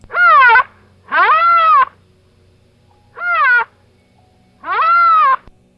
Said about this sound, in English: And that tiny voice is a huge animal, a rhinoceros.